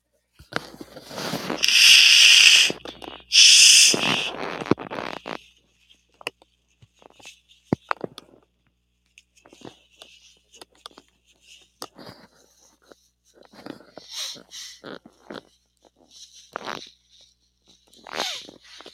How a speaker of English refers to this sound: Give me a second, guys. Sorry. Gotta blow my nose here. There's no getting out of this one.